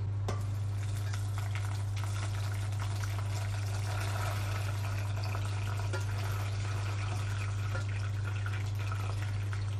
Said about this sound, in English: I'm going to pour the milk in now, all right, Jack. You know, strain the milk, I should say.